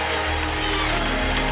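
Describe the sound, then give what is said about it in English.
A church audience claps together as people come down the aisle, in a dense, steady wash of applause that stays loud throughout, with a low hum of crowd noise beneath it. “Come on, they're coming and we're clapping.”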